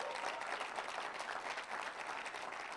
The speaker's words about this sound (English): Let's give them another hand clap, guys. Thank you.